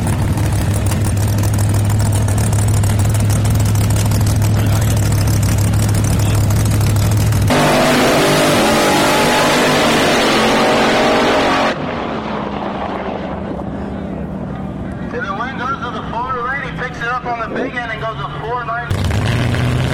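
A Chevrolet drag racing car idles with a steady low rumble, then erupts into a loud, harsh roar that gives way to rising, wavering engine tones as it accelerates hard down the strip on a pass.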